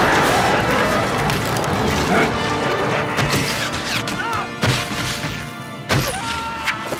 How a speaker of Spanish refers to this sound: Y aquí les dicen que disparen todos los arqueros y están disparando. Pero lo que no tienen en cuenta es que los Uruk-hai tienen pólvora y hacen una bomba. Y aquí siguen disparando las flechas y siguen cayendo los Uruk-hai.